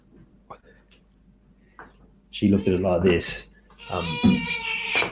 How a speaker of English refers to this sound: Apologies, I'm just got a cat scratching my leg.